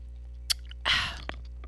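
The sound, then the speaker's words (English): Someone chews ice cubes from a drink and spits them out: a sharp crack, then a short wet, crunchy burst and a small final tick over a steady low hum. “Spitting out my ice cubes. Don't tell my dentist. I'm chewing them too.”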